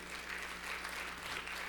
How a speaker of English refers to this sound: Give her a nice big round of applause.